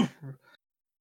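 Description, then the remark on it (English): A single short, deliberate cough with a throat-clearing rasp, voiced as a bartender coughing pointedly at someone, breaking into two quick bursts before falling silent. “You hear the bartender cough at you.”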